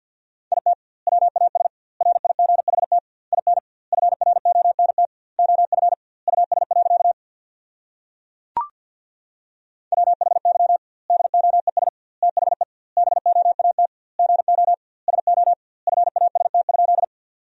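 Rapid Morse code beeps at 50 words per minute in a steady mid-pitched tone, sending English sentences with double word spacing, short and long bursts grouped into words with brief gaps, plus one sharp click partway through and a longer pause.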